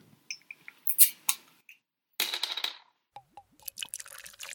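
A few sharp clicks and a metallic pop as the cap comes off a bottle of Oil of Aphrodite, an imperial stout brewed with walnuts, from Athens, Ohio. Then a gurgling, glugging pour into a snifter glass, with bubbly sputters near the end. No one speaks.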